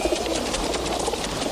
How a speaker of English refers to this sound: It's like, there's like hundreds of birds around four people. Remember the park I told you about in New York? Well, this is it.